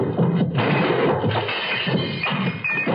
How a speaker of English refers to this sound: Sounds of a scuffle, glass breaking, and suddenly, blessedly, I heard